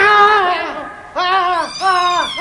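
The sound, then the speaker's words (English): A cat lets out loud yowls as it attacks a man: a long wavering cry, a short break, then two more drawn-out rising-and-falling wails in quick succession. “The cat launched herself, not at Malcolm, but at the luckless custodian.”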